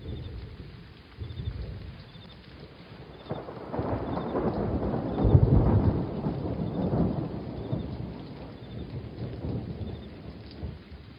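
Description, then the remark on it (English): Steady forest rain from a movie scene, played over a Saturn visual, hisses across a wide band while a deep rumble of thunder swells in the middle and slowly fades, with no voices, giving an immersive stormy downpour. “And I mean, my favorite scene in the whole movie is the rain, forest rain.”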